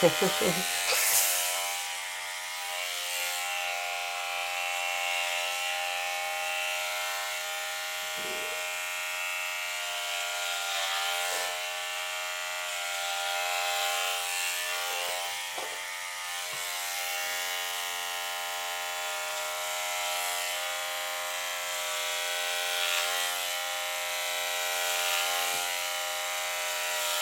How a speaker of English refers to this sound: The clippers are rattling my brain. It's like snake rattle and roll, right?